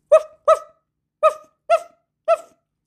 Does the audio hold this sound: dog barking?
yes